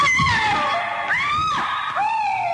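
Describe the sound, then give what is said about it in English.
A sound effect of a woman screaming while tortured: loud, high-pitched wails that rise and fall in pitch, broken by a couple of short catches of breath, with no talking. “Woman screaming while tortured.”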